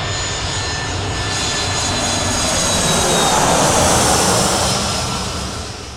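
A jet airplane engine roars steadily and loudly with a thin high-pitched whine on top, swelling a little toward the middle before easing off slightly. No voices are heard.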